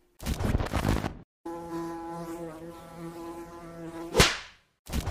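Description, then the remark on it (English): A bee buzzes steadily for about three seconds, its drone wavering slightly, then a sharp crack cuts it off. Short bursts of rough noise come before and after. “But, you know, fuck around, you won't be around, bee.”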